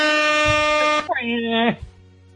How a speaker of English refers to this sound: I put the friggin' air horn, like, up to my face and honk it at myself.